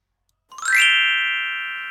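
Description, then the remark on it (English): A bright glockenspiel chime rings out after a brief silence, a quick rising run of metallic notes that settles into a sustained, shimmering tone slowly fading, clear with no voices. “There's our chime, our Glockenspiel, boys and girls.”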